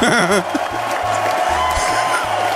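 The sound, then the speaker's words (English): A loud, dense wash of crowd noise, with cheering and clapping blending into a steady roar that holds for the whole few seconds, plus a low hum underneath. “Hey, look at that crowd. Listen to them.”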